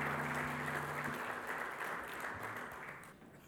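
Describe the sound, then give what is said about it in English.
An audience at a House of David service claps for the worship team in a dense, steady burst of applause that holds for a few seconds and then tapers off, with a low sustained keyboard note underneath at the start. “And let's give all the worship team a hand clap.”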